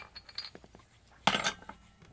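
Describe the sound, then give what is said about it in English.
Glass beer bottles knock together in one bright, ringing clink about halfway through, preceded by a few faint, light taps. There is no talking. “You got a clanky clank? Clanky clank.”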